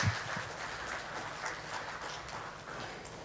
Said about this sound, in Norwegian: Du må gi kona mi en god klapp, da.